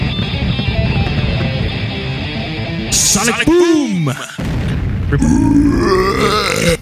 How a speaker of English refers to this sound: We got a message from a guy who was like, yeah, your burps sound like nails on a chalkboard. And that's for you, sir.